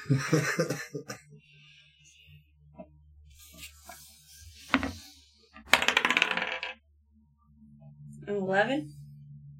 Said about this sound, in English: Roll a luck roll. Choose your own dice.